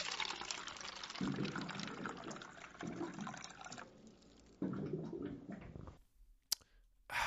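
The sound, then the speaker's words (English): Water gurgles and streams steadily into a cup from a cooler, the pour surging in a few bursts before stopping, followed by a sharp click and a brief final trickle. “It's time for this week's water cooler facts.”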